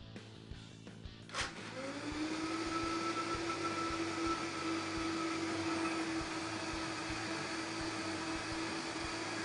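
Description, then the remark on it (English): A blender clicks on and its motor quickly spins up to a loud, steady whir as it blends blanched green herbs with oil, with a rough churning noise underneath that continues unbroken until the end. No one speaks. “Put them into the blender.”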